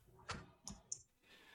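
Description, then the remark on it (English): Eight dice are rolled for damage, clattering in three quick, sharp clicks over about a second, fairly quiet, followed by faint rustling. No one speaks. “So that's going to be half damage from a whole shitload of dice.”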